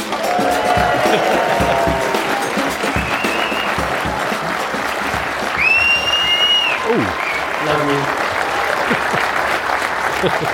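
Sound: audience applause and whistling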